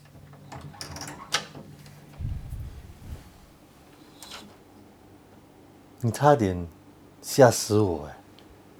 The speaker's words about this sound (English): That's a very sad door. Why must my door make this sound? Sounds very sad. Huh? That's a haunted movie kitchen door. I need to oil this door. It's so noisy.